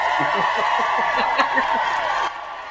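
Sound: round of applause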